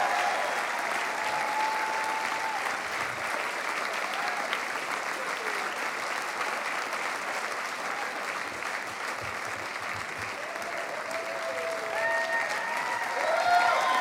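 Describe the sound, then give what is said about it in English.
An audience applauds steadily for the whole stretch as the speaker's wife is introduced, a dense, even wash of many hands clapping, with faint cheers and murmured voices rising through it. “Give her a hand clap.”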